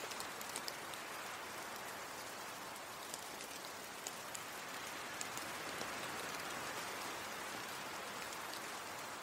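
Steady rain falls without pause, a dense even hiss dotted with brighter drop taps, holding a constant moderate level throughout with no voices.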